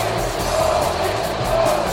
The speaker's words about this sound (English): Listen to the crowd, the fans in Chicago giving him his just due.